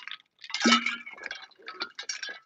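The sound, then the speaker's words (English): Ice cubes clink and rattle against a glass, with a wet slosh of liquid; a cluster of irregular knocks and taps spread over a couple of seconds, no voices. “My ice cube.”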